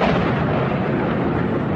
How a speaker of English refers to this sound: What the hell was that? Sounded like a plane crash. Yo, close to you! Come to us! That happening at 8:46 a.m. New York time.